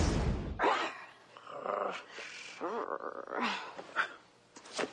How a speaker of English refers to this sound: Woof, woof, woof.